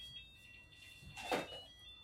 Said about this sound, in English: He's got an alarm there.